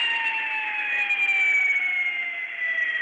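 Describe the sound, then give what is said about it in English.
An ambulance siren wails steadily and loudly, its tone gliding slowly downward over a few seconds, with no voices over it. “Ambulances went to on the street, Internal Peace Avenue, and in the hospital.”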